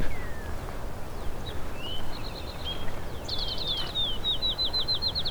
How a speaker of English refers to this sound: Got a couple eastern towhees here.